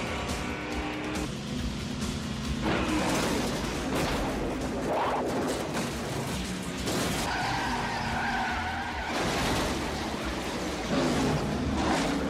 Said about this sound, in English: There's a crash at turn 3, and some oil at the bottom of the track.